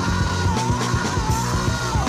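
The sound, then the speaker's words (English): A loud, dense rock track with a singer screaming a sustained, raw note over distorted guitars and steady pounding drums. “Oh, he's screaming now.”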